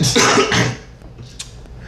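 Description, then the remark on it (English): A person coughs hard a couple of times, harsh raspy bursts in quick succession, then trails off into quiet breathing with a faint catch of the throat. “Damn, why the fuck am I coughing?”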